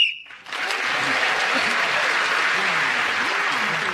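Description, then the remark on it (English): A short, shrill game-timer whistle sounds at the very start, ending a timed round of a radio panel game as Paul Merton speaks, then loud, steady applause from an audience takes over and continues to the end. “And Paul Merton, speak as the whistle went, gained that extra point.”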